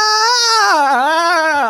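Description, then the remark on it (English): The Ghost of Christmas Past lets out a ghostly wailing scream after taking damage from crossbow bolts: one loud sustained cry with a rich harmonic tone whose pitch wavers and sags, then cuts off abruptly after nearly two seconds, with no talking. “And once again, the Ghost of Christmas Past takes all of this damage, lets out a bit of a wail, a bit of a scream.”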